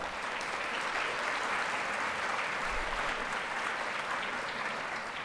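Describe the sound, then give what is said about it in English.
A lecture audience at the AGO claps steadily for several seconds, a dense, even wash of many hands at a constant moderate level with no voices standing out. “So a round of applause.”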